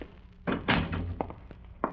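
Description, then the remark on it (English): A front door opens and shuts with a few solid wooden thunks and a closing thud, spread over a couple of seconds, with faint handling noises between them and no talking. “I fell asleep in the chair, but was awakened a little after 10 when I heard the front door open.”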